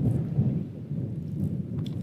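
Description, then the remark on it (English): Steady low rumbling buffets of wind battering the microphone at about 4:30 in the morning, with cool clouds hanging over the ridges, a dense, loud roar concentrated in the bass that stays constant throughout, with no voices. “Bit windy, as you might be able to hear through the microphone.”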